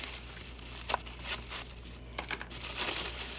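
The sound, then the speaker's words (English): Soft, irregular crinkling of the wrapper of an oil filter being handled, with scattered crackly bursts over a few seconds, quiet, and no voices. “I would like you to examine this oil filter for me. It looks like a roll of fucking toilet paper.”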